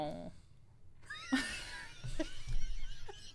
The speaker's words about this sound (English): Sorry, there's a cat in here. Get out of here, cat!